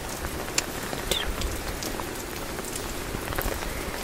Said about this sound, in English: And it's even a bit warm out still right now. I think it's always so cool when it rains, when it's warm out, because I like to go outside and enjoy it and just sit in it for a while, and you can do that really comfortably if it's warm out